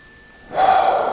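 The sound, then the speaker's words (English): After a brief silence, a single deep breath is drawn in sharply during a breathing exercise, a loud, airy inhale that carries on until the end. “So just go ahead then and return to your normal breathing and just maybe full inhale and a full exhale.”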